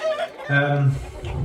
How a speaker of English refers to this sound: it's just me and two pumped up cockerels in separate cages here in the room.